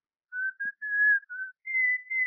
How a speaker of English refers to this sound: Will you stand back to your phone about 5 feet, please? Huh? Oh, sure. Sure. I am. Thank you. Now, whistle.